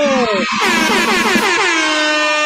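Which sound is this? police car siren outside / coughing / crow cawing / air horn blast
air horn blast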